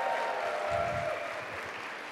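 Steady applause from a crowd fills the space, a dense wash of many hands clapping at once, sustained and fairly loud throughout with no voices standing out.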